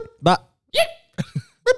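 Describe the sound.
People imitate game-show buzzers with their voices for an MCU (Marvel) trivia game: four short, sharp vocal bursts in quick succession, each a brief nasal honk with a bright, buzzy tone, separated by short silences.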